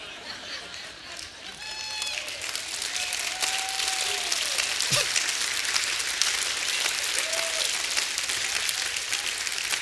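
A crowd applauds steadily, dense clapping building and holding loud throughout, with a few whoops and cheers rising above it and faint crowd murmur beneath.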